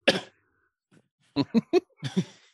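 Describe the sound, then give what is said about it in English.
A single voice imitates a far-off crowd of zombies, like hundreds of voices coughing at once, with harsh, raspy coughing grunts: one long burst, a pause, then a quick series of short choppy bursts, fairly loud. “From the distance, you hear a crowd of zombies go.”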